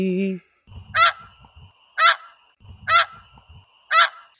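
Snow geese honk four times in a steady rhythm, about one loud, harsh call per second. A low rumbling murmur sits underneath, and a brief tonal note sounds at the very start.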